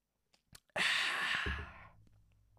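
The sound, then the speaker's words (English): A few faint slurping clicks of someone sipping a Voost drink, then a long, loud, breathy exhale of satisfaction that slowly fades. “I'm just going to have a sip of this Voost.”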